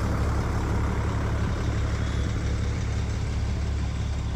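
The heavy engines of twelve buses idle in a steady, deep rumble that holds at an even level throughout, with a continuous low drone and no voices.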